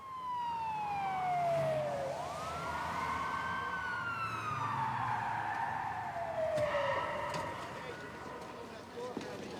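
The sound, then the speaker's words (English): An ambulance siren wails, its pitch sliding down and sweeping back up as the vehicle pulls in, over a steady rumble of street noise with muffled voices underneath. “For example, the scene where the ambulance pulls in and suddenly all the lights go out.”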